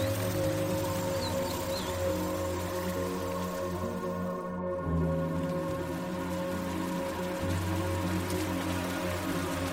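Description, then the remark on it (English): Steady, gentle rain patters on a surface at night in a forest around a cabin, a soft continuous wash of drops with a low ambient hum beneath, even throughout with no voices. “Exhaling, feel the cozy peace of the cabin envelop you, as if each breath out releases the day's tensions, aligning your heartbeat with the gentle patter of raindrops.”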